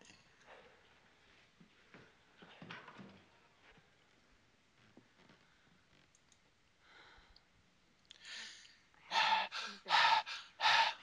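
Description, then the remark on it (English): Heavy breathing, quiet and ragged at first with faint clicks, then four loud, forceful breaths in a steady rhythm near the end. “Breathing real heavy.”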